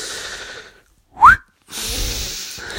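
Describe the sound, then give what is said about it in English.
A single short human whistle, a signature whistle, sweeps quickly upward in pitch, loud, set between stretches of breathy, hissing noise with no talking. “There's the … whistle”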